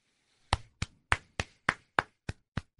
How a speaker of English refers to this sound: I think just an extended applause.